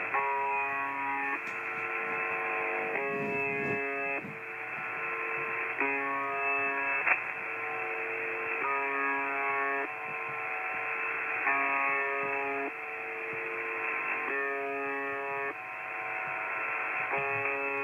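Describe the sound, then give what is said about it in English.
A harsh, monotonous buzz tone from the shortwave radio station UVB-76, known as the Buzzer, repeats in regular bursts of roughly two seconds over a steady static hiss, with no voices. “Now, it broadcast a short, monotonous buzz tone repeating.”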